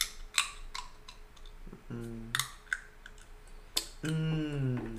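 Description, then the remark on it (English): Someone chews on hard plastic jewel pod scraps from a vape, making loud, irregular sharp clicks and crackles picked up by the mic, with a couple of brief hummed voice sounds in between. “I like jewel pod scraps. Jewel pod scraps? Yeah. Those are okay. They're good to chew on.”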